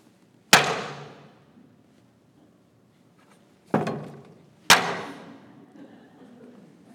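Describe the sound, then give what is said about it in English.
Three sharp hammer strikes on a level, the first alone, then two more a second apart after a pause, each ringing briefly and decaying, fairly loud with no talking. “I can hammer on it.”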